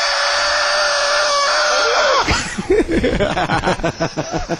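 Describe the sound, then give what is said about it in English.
A steady, high-pitched dental drill whines loudly for about two seconds as a person's teeth are drilled and fixed, then cuts off into a run of quick, cackling snicker-like bursts. “Now he's drilling his teeth.”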